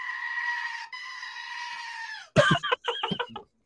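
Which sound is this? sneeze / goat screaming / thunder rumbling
goat screaming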